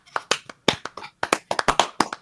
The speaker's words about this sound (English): All right, folks, that's going to be a show. Let's clap it out.